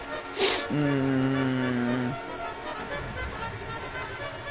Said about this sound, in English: All these custom horns. That's mine too. You're hearing it. Mine's the Liberty City one. I'm just a honk.